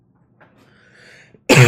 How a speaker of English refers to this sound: Sorry for coughing, guys. I have, like, itchy throat this morning.